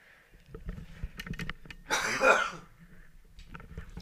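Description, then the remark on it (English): A single muffled cough bursts out partway through, off-mic from the opposite side of the room, with a few faint knocks and rustles around it and no talking. “you're going to cough, you run to the opposite side of the room.”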